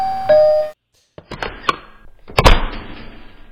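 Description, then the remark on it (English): A bright electronic doorbell chime rings once and cuts off, then after a short pause come several sharp knocks and clunks of a door latch and the door swinging open. “you ring on a doorbell, and then the door opens”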